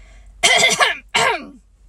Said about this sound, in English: He coughed in an important way and began again.